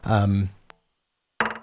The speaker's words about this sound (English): So the nature of the way this patch is working, we have this clicking sound, which almost sounds like the kind of clicking you don't want in music. And by almost, I mean totally sounds like that.